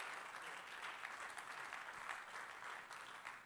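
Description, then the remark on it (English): An audience claps hands in praise to God, a steady, dense wash of applause that holds a fairly even loudness for several seconds, with no voices standing out. “Clap your hands and give God some.”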